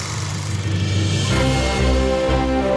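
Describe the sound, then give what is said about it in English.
A loud motorcycle engine growls with a deep, fluctuating rumble, then its tone shifts and rises into a steadier, layered drone as it passes. “Whoa, you fucking motorcycle.”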